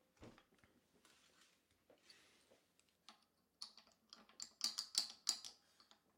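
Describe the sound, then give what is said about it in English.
Crisp clicking from a cheap guitar string winder, coming in irregular ratcheting bursts that grow louder and denser toward the end, with no voices. “Sorry about the clicking.”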